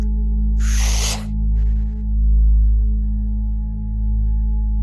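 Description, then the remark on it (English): A sharp, forceful burst of breath is pushed out in Kapalabhati yoga breathing, followed by a second, fainter puff, both hissy and airy over a steady low hum, with no talking. “We're going to repeat the process of kind of interrupting the sequence with the 50 rounds of Kapala Bhakti. So just slowly bring yourself around to that exhalation.”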